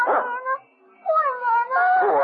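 A dog whimpers and lets out drawn-out, wavering howls, fairly loud, with a short pause between mournful cries.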